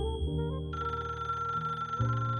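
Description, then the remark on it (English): A telephone bell rings steadily and fairly loudly, a continuous metallic ring layered over a low sustained tone, with no one speaking. “My restlessness had met its match of bourbon and smoke, and I was about to flop when the phone started rattling off the hook like a fellow who dropped a red-hot cherry in his drawers.”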